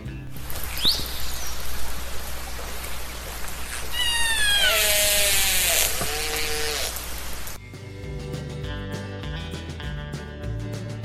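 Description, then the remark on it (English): Orca whale calls: a few high, squealing cries that rise and bend in pitch over a steady watery hiss, giving way to soft music partway through. “Okay, well, since I guess we don't have any sponsors, enjoy the nice, soothing sound of orca whales.”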